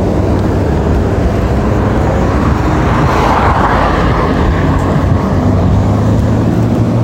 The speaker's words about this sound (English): There's this Porsche though right here that drives by. That's totally just like raced out.